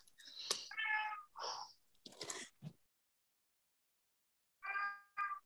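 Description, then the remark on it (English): A male pet cat meows several times in quick succession, fairly loud, then falls silent for a couple of seconds before one more drawn-out meow. “You have a cat.”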